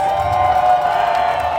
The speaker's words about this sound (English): I mean, all the bell ringing and whistling, was that heckling or was that them? That was heckling. That was people trying to drown him out.